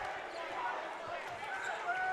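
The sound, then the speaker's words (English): A basketball bounces a few times on a hardwood court during a game, as a player catches an entry pass and takes a little hop before dribbling, amid the echoing murmur of a gym crowd, the dribbles muffled and blending into the steady ambient noise. “He's going to walk with it as he caught the ball there on the entry pass and just took a little hop before he ended up actually dribbling it.”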